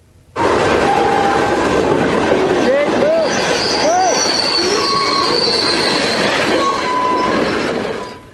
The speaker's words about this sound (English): Well, Via Rail has cancelled all passenger travel between Montreal and Toronto tonight after a freight train derailment in eastern Ontario. That crash all caught on camera.